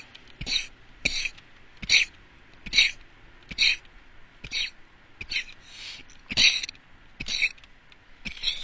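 A long run of about ten short, harsh coughs in the morning in a steady rhythm, roughly one per second, each a rough, breathy burst, with no talking in between.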